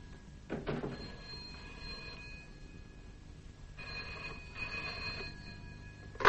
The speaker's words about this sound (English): Oh, there's a telephone. Would you excuse me?